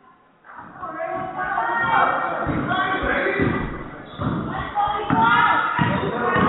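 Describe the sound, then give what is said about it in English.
A basketball is dribbled on a hard court by a Lady Rams player, number 24, during a game, its steady thumps repeating roughly every half second beneath a noisy gym crowd and a voice talking. “And here comes Lady Rams, number 24 with the dribble.”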